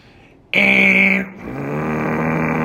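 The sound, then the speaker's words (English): A voice mimics a huge tan-colored air conditioning unit firing up at night, heard with the windows open: a loud, buzzy hum bursts in, breaks off briefly, then settles into a lower, steady droning whir that holds to the end. “I swear to God, when their air conditioning was out, every night when that would fire up and we had the windows open, it would go...”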